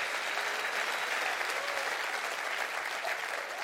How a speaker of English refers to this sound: Come on, clap your hands.